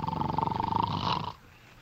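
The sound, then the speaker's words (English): A single loud, rasping snore with a rough fluttering rattle, alone, lasting just over a second before it cuts off abruptly into near silence. “must you start snoring as soon as you close your eyes?”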